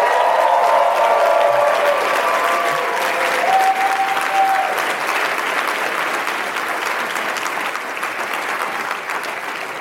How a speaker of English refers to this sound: And she's in the back there if everybody wants to give her a big round of applause.